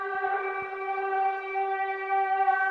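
A steady, droning siren-like wail holds one unwavering pitch with bright, buzzy overtones, sustained loudly for the whole stretch with no speech over it.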